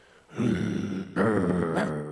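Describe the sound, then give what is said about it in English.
A person imitates a little bulldog's bark with two long, gravelly, growling woofs in quick succession, loud, with no other talking. “Like a little bulldog. I'm still in preseason. I still got a preseason bark.”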